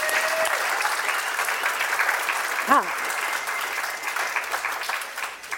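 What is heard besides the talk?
audience applause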